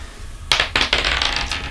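Dice rolled for an occultism check clatter onto a hard surface in a quick burst of bright, sharp clicks and rattles, bouncing several times before settling, with no talking over them.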